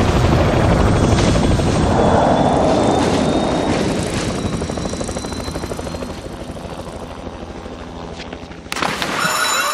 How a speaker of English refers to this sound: Flew in here at 3 a.m. on their stupid helicopter